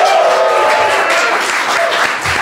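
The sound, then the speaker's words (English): A live crowd at Mozilla's Glassroom in San Francisco claps and cheers steadily, a dense wash of many hands, with a few scattered whoops and no clear speech. “We're live at Mozilla's Glassroom in San Francisco. We've got a crowd. The crowd is here.”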